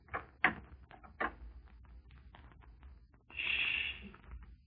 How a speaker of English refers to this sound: You knocked, friend.